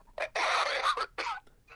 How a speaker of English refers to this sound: Grandma, don't choke. I'm not. You were just choking. I was just coughing. There's a difference.